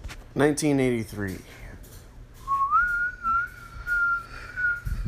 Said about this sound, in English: The wind whistling in between the mountain peaks.